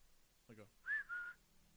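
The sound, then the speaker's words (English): A person whistles a short two-part tune, a rising note followed by a steady held one, fairly loud, just after a brief low voiced sound. “They manage to take out all the thugs and realize Jim is now missing. They hear a whistle.”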